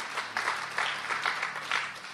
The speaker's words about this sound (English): I thought y'all would clap a little bit better for that. I think that's amazing.